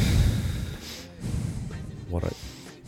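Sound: imitated heavy breathing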